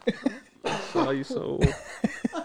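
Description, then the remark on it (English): A person coughs and sputters repeatedly, harsh choking coughs with throat-clearing bursts, after a piece of chili went down the wrong pipe. “I had a piece of fucking chili going on the wrong tube.”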